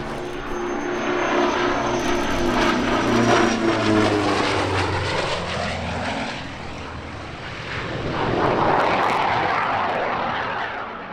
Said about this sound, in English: you might be listening to that wonderful sound and thinking, you know what, that sounds a bit like a Yak engine